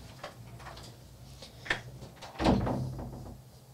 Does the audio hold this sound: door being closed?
yes